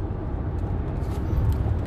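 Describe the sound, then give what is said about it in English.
Steady low rumble of a car's interior while driving, a continuous road and engine drone filling the cabin with no voices over it. “My mom's nervous because I'm talking while I'm driving.”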